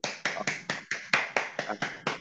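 About ten crisp hand claps in a steady, brisk rhythm, close by and moderately loud, with no one talking over them.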